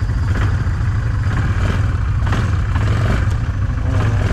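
A Yamaha ATV engine revs steadily with a loud, deep rumble while it pushes through a river, with a constant hiss of churning water and a few brief surges. No one speaks.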